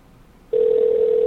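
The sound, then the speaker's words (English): After a half second of faint line hiss, a loud, steady electronic ringback tone starts abruptly and holds unbroken to the end, like an outgoing phone call ringing through a handset. “Let's see if he'll pick up the phone.”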